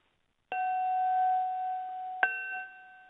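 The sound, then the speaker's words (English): A wine glass is pinged twice with a finger, each strike giving a clear, bright ringing tone that sustains and slowly fades. The sound is fairly loud, with no talking. “So I ping the glass with my finger, and I hear this note.”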